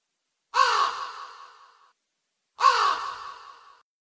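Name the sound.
imitated bird call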